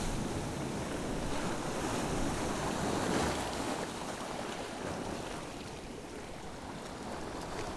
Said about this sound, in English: A heavy, fine spray is spumed out. And the sea becomes all creamy and broken, and then another sweeps in underneath me and crashes in. A never-ending process. Oh, it's a big one. Wow, that was impressive.